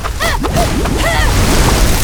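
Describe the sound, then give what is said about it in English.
A loud, steady rush of water surges and sloshes for about two seconds, close and forceful, with brief tonal whooshing sweeps riding over the churning noise. “The snow is cold enough to freeze my water!”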